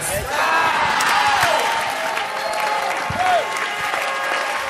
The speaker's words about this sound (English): Oh, your shouting is too weak for this one.